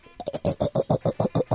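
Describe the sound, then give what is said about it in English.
A band member imitates a pig with a quick run of about nine rhythmic, throaty snorting grunts, loud and evenly paced, with no other talking. “Let's get your best pig impression.”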